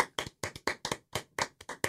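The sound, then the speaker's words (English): Hands clap in a quick, fairly steady run of about ten sharp claps over two seconds, crisp and moderately loud, with no voices. “We're clapping.”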